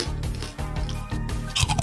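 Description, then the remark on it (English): Crunching on a snack, with repeated crisp bites and chewing sounds in quick succession, fairly loud and without any talking over it. “Crunch it. Just crunch it.”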